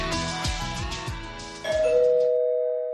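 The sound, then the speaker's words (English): A doorbell chime plays a quick run of bright, melodic notes, then lands on one loud sustained tone that rings on and slowly fades. No one speaks. “Someone's at the door.”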